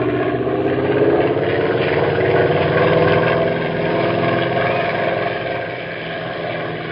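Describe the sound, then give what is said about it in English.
A small airplane engine drones steadily throughout in flight, a continuous hum with a slight throb, holding a fairly even loudness and easing off a little near the end. No voices. “Meantime, what do you say about taking the plane back home?”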